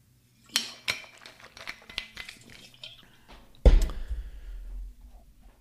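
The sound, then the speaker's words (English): Someone takes a drink of water: a run of small clinks and taps from a glass being handled, then a sharper knock and a low, rumbling swallow before things go quiet. “Take a drink of water here.”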